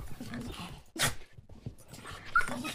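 A dog whimpers and pants, letting out one sharp bark partway through before whining again in short, high-pitched bursts.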